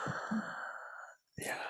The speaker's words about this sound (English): Yeah, you're just breathing into my ears at this point.